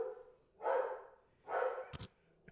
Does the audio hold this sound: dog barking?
yes